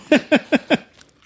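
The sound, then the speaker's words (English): Four quick, evenly spaced crunches as pretzel pieces in ice cream from a pint are chewed, each a short, bright burst about a fifth of a second apart, then a faint trailing crackle and quiet. “And whenever we buy this sometimes, and whenever I've bought it, I've had very inconsistent results with whether the pretzels are crunchy or kind of mushy. That sounds crunchy.”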